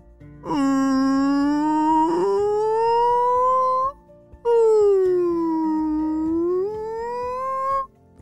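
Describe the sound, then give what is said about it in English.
Two long, mournful whale calls, each a loud moan that dips and then slowly rises in pitch, separated by a brief pause, with no other sounds around them. “Do you know how to speak whale?”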